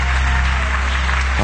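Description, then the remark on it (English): An audience claps steadily in praise of God in a dense wash of hand claps, with a low sustained musical hum beneath and a voice rising briefly at the end. “Come on now, put some mouth with those hand claps and magnify the King of Kings and the Lord of Lords.”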